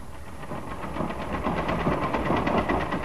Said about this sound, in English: she sits working at the sewing machine she set up in one corner.